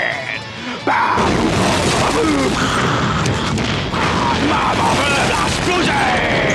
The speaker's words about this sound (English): Boom! Michael Bay explosion!